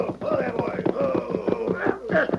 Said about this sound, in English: Gallop your horse, Harvey.